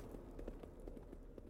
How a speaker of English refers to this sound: Wang Chu has brought his horse about and begun galloping for the tree line